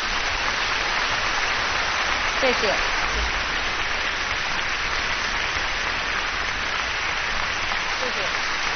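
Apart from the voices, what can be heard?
audience applause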